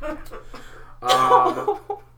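A few soft, breathy coughs, then a louder raspy, voiced coughing fit up close, trailing off into a couple of weaker hacks.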